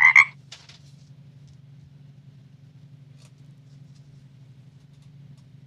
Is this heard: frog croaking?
yes